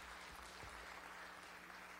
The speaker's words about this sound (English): If you are a visitor with us, I want to say welcome. We are so glad that you're here with us today. Can we give all of our guests today a hand clap of welcome?